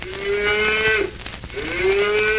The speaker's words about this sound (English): And now, I'm a moo cow.